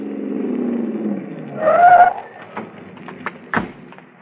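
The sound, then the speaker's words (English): A car engine hums low, then a brief tire squeal rises as the car, being chased, turns into a parking lot and slows, followed by a few scattered thumps and clunks. “He's pulling into that parking lot.”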